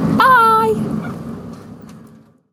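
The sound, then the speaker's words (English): Chickens cluck on a farm after being fed: one loud, drawn-out squawking call opens, then softer murmuring clucks trail off and fade into quiet over a couple of seconds. “I've been and fed the chickens now, and I'm just going to go into the kitchen”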